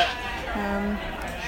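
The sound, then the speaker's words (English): A single sheep bleat, a short wavering cry lasting under half a second, rises over a steady outdoor background hum. “The lambs are very cute.”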